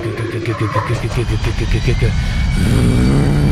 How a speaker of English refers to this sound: Because you also hear in the back an engine fire up and it's going.